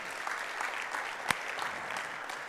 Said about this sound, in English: And I just thought, first off, I want to celebrate the fact that they're doing that. Could you guys give them a round of applause?